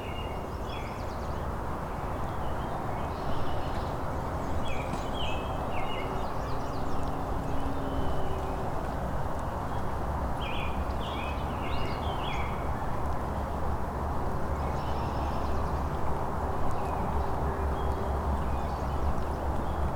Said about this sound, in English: There's a great crested flycatcher.